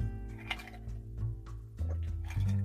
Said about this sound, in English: Had to drink some water, but I'm happy.